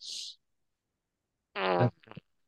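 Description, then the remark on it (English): A short hiss, then after a pause a loud, buzzy fart that ends in a few wet sputters. The sound stands alone with no talking. “Change your drawers, man.”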